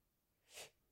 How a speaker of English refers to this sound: I sneeze.